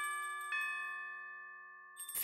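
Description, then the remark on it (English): A bell is struck, then struck again half a second later, its bright ringing tones slowly fading. A short burst of hissy noise cuts in at the very end. “And the answer I was looking for was bells and whistles.”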